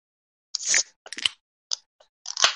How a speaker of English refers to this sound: So what we're gonna do is if you can get your can nice and close to your mic there, we're gonna open these suckers up and we're gonna take a sip and we're gonna talk about it.